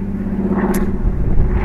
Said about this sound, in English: It's just a plane going overhead. And frankly, dear listeners, I just wanted to say it's one of these seaplanes. You'll hear it. I love these planes. They have pontoons on them, and it's flying across the sky. Maybe a four-seater plane.